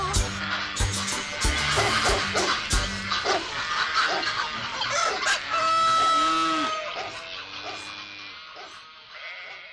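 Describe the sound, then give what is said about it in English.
A busy farmyard chorus of chickens clucking nonstop while a rooster crows loudly over them, the calls overlapping for the whole stretch before thinning out near the end. “Here a chick, there a chick, everywhere a chick, chick.”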